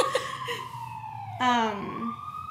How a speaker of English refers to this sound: Siren, wow. Can you not tell that we're recording a podcast?